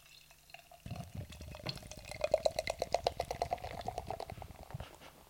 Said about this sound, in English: I can smell it from here. Yeah, yeah. What I was going to say is like the aggressive pour sounds great, but is a terrible pour. No, apparently you're meant to get good head on it. I mean, I don't know for a sour.